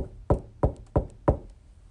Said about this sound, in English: Then there was a knock at the door.